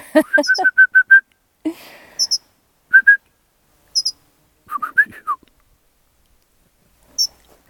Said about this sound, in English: That bird agrees with me. I can tell. He did. He went weep, weep.